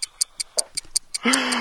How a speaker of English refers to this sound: But is that ticking that I hear, …? That is ticking that you can hear, …. So let's go and check out the Doom Clock and see if that lasts a bit longer than News Patrol.